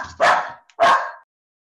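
A dog barks twice in quick succession, two loud, sharp barks with a brief pause between them and no other sounds around.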